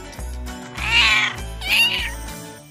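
A cat meows twice in quick succession, two drawn-out, fairly loud cries over a steady, pulsing low background beat.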